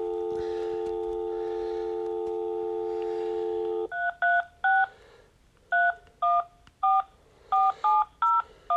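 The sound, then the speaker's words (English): A steady dial tone hums for about four seconds, then a rapid series of touch-tone keypad beeps follows, each short dual-pitched tone clear, as a phone number is redialed on a telephone. “And let's see if we can go ahead how to redial on this phone.”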